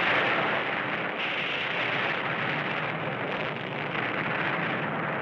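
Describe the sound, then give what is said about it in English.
A dense, continuous roar of explosions from an underground nuclear test in 1971 on a small island near the Aleutians blends into one steady, loud rumble, with no clear gaps between blasts, lasting the whole stretch without any voices. “And then there's just a bunch of explosions.”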